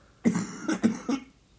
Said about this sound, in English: No, I'm just trying not to cough. Oh, cough away, mate. I'll mute it in the edit to save the listeners.